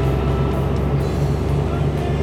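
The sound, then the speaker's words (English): A truck rolls in, its heavy engine rumbling steadily, a deep continuous drone with a low idling throb, loud and unbroken for the whole stretch. “So about the time you finish your conversation, Lacerate does roll in with the truck.”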